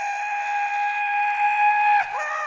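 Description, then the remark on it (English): A loud, steady steam train whistle blows for about two seconds with a bright, layered tone, then breaks off abruptly with a short clunk and a brief falling pitch as it trails away. “For your safety, remain seated with your hands, feet, arms, and legs inside the train, and be sure to watch your kids.”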